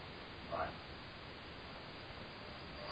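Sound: static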